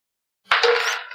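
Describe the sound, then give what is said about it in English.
After a brief silence, dice clatter sharply onto a hard surface, a quick burst of bright rattling clicks that rings on briefly and fades, with no voices. “Roll that dice.”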